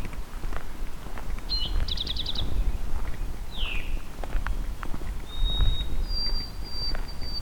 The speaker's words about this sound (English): There's a white-throated sparrow singing. This is a white-throated sparrow.